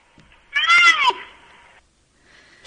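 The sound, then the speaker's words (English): A young bull rhino gives a single loud, high-pitched squeal that sounds almost like a kitten's mew, bending downward and trailing off into a thin whine, with no talking around it. “And then this is a younger bull.”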